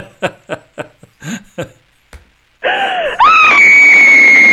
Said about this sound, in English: There she is, the screaming lady. Okay, yes, so we have a gag going on.